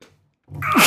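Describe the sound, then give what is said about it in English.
A single sharp human sneeze bursts out loud after a brief quiet moment, with a short breathy intake leading into the explosive release. “Bless you.”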